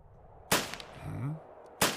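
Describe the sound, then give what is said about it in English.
Two sharp, cracking gunshots about a second and a half apart, coming from the Raider camp, each a sudden loud bang that rings out briefly, with a low murmur of background noise between them. “Are those gunshots? It's coming from the Raider camp.”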